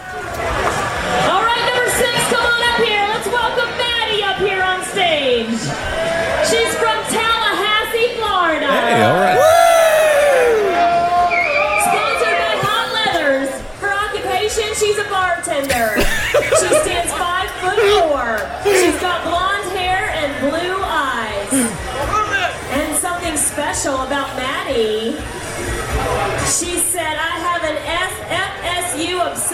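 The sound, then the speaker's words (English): A packed bar crowd in Orlando, Florida erupts in loud, sustained cheering, whoops and yelling, with many overlapping voices shouting and hollering continuously for about thirty seconds without letting up. “That got the crowd going.”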